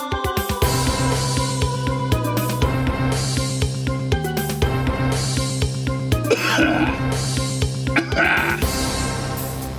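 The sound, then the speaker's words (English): Repeated harsh coughs and throat-clearing bursts come loud, one after another, over a steady humming tonal background with no clear talking. “I could save coughs in a bottle.”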